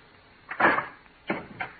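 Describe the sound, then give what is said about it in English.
A door is opened: a brief thud and scrape of the latch and wood, followed by two quieter clicks a moment later, with no voices. “Darling, let me in. Please open the door.”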